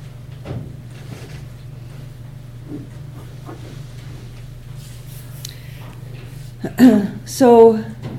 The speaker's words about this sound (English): would you mind closing the doors? Yeah, thanks.